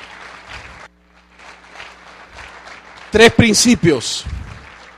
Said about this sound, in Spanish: ¿Cuántos le regalan a Dios un aplauso en esta noche?